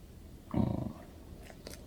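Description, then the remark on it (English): A single short, gruff bark or growl from Layla, the speaker's dog, muffled with an echoey quality, followed by a couple of faint clicks in an otherwise quiet moment. “And that's Layla barking or growling.”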